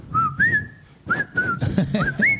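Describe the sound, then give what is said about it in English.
Someone whistles a short melodic tune, clear, with a few sustained notes that slide up and down in pitch, over a low murmur of background noise. “They were fucking whistling that fucking song.”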